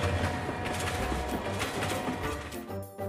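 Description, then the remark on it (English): A steady rumbling train ride with rhythmic clickety-clack beats over the rails, fairly loud and continuous, easing slightly near the end. “Come on and use your imaginations as we take the train to Storyland.”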